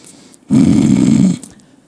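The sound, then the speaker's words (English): A single loud, rumbling snore lasts just under a second, a deep rattling inhale with a strong low buzz, followed by quiet breathing, from a person sleeping in the back during a church service. “A few people sleeping in the back, a couple snoring.”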